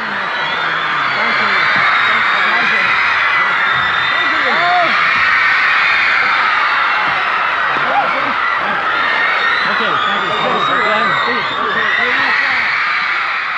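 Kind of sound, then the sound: crowd, audience screaming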